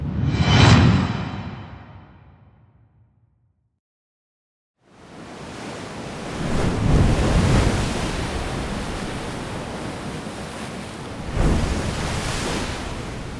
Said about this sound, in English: Between the crashing of the waves, Pyrrhus finally managed to get a firm grip on a rock. He got a foothold and hauled himself up, out of the reach of the cold surf, onto the Italian shore.